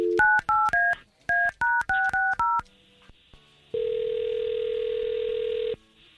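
telephone number being dialed

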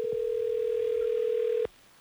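telephone dial tone

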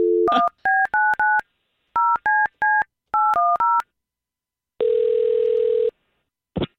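telephone dialing tones

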